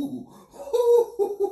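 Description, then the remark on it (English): A person's voice imitates an owl, giving a few drawn-out, tonal hoots in quick succession, fairly loud, with no other talking. “Like I say, there's a lot of owls out there. You know what I'm saying? Men and women. Hoo! Hoo!”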